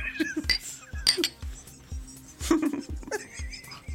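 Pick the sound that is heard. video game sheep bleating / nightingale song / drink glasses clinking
drink glasses clinking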